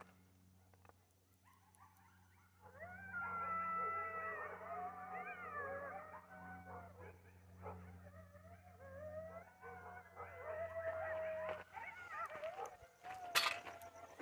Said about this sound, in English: It's a coyotes.